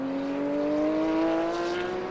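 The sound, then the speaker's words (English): A race car engine drones loud, its steady tone slowly climbing in pitch as it holds a constant roar for a couple of seconds, with no voices, as the number three car comes in for a stop-and-go penalty during a race. “In comes the number three car for that stop and go.”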